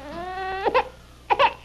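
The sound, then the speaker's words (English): A baby cries with a long, rising wail that breaks into two sharp, choppy sobs after a brief pause. The crying is loud and high-pitched, with no talking. “A baby. Me with a baby.”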